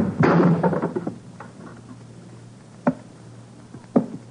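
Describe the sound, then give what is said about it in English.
A loud sharp crack as the edge of a hand chops down on the thick wooden arm of a chair, snapping it, followed by a brief splintering rattle, then two isolated thuds as broken pieces drop. No voices are heard. “When I brought the edge of my hand down upon the arm of that chair, it snapped like a dry twig.”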